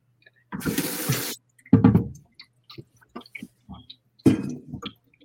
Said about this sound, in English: I'm going to fill up this water.